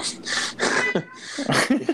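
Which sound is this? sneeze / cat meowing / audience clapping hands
cat meowing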